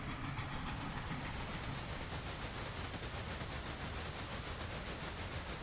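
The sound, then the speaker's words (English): Steady rumble of a moving steam train, its wheels clicking over the rail joints on the tracks below in an even, repeating rhythm under broad, constant noise. No voices. “smelling the smoke and feeling the heat of the train's firebox, hearing the sound of the wheels clicking on the tracks below.”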